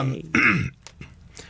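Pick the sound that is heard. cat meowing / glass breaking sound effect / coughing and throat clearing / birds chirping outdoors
coughing and throat clearing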